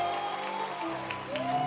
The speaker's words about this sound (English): Can you clap your hands for Jesus?